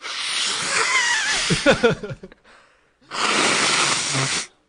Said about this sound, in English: No, I think the vinyl, it's doing the crackle. The crackle good. Sound. Yeah. I'm hearing it. Yeah. Distinct vinyl.